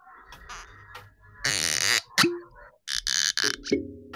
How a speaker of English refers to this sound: So these are all the cork pops that we've done across the shows over the last few weeks.